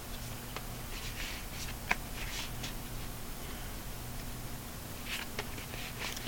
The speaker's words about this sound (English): And on that note, we'll shuffle the deck and drop some cards and make some spikes. That's cool. Some ending spikes. Just when you thought it was whispery, here are some spikes.